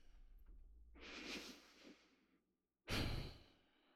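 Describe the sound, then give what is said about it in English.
Deep breathing up close, in through the nose and out through the mouth: a long, slow inhale drawn in over about a second and a half, a brief pause, then a strong, airy exhale that tapers off. No talking. “We're going to give ourselves a few more seconds, a few more breaths.”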